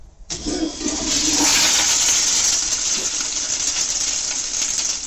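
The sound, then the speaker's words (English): A toilet flushes with a sudden loud rush of water that starts abruptly and keeps roaring steadily for several seconds, with no voices. “Yeah, if I knew we were going to have this much talk, I would have loaded a toilet flushing or something sound.”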